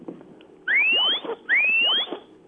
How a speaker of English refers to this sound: And once the dog has driven the sheep far enough, then you can call the dog back, and that whistle sounds a little bit like this.